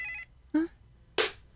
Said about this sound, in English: Okay. We'll wait till we. Okay. I don't hear a ring, though, but I'm so. Oh, there it is. There it is.